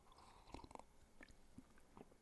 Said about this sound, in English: Let me take a sip of coffee and maybe things will improve. Hold on.